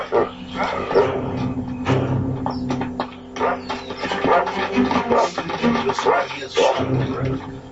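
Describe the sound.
A dog that is not on a leash barks repeatedly in short, irregular bursts over a busy, noisy background, with other voices or activity mixed in and the barking fairly loud.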